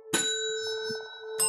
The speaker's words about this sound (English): Oh, your bell sounds nice. Well, let's compare bells. Here we go. Here's mine.